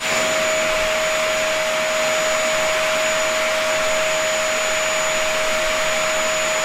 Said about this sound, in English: Could be anything with a motor, that one. Play it for you again. Yeah, that's a vacuum cleaner. That's a vacuum. Might be a Henry. You never know. Might be a Henry.